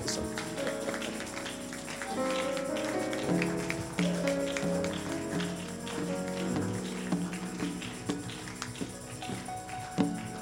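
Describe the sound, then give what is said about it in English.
Steady, rhythmic hand clapping from a group keeps time over sustained, held keyboard chords that play throughout, with sharp clap accents scattered across the whole stretch. “You see the way people are clapping their hands.”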